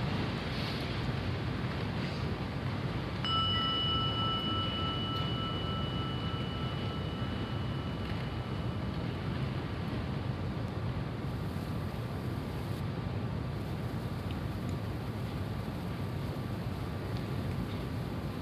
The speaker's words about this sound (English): Just close your eyes for a moment and just let the sound of the gong be an invitation right back here again.